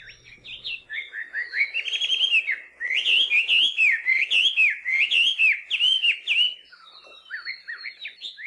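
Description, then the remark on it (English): A melodious laughing thrush (Chinese hwamei), a rusty-brown songbird about 9 inches long, sings a long, rich, continuous song of rapid, varied whistled phrases, loud, with a brief pause midway before the warbling resumes. “Melodious laughing thrush, or Chinese wamei, are one of those birds that are much more often heard than seen.”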